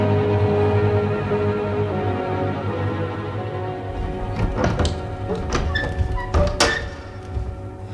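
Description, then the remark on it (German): A 1000-year-old portal door creaks on hinges that have never been oiled, with a drawn-out, groaning tone, followed by a few dull wooden thunks and knocks as it moves. No one speaks. “Ach, Himmel, dieses Portal ist 1000 Jahre alt und die Angeln wurden noch nie geölt. Das klingt nun mal wie eingeklemmte Katzenschwänze.”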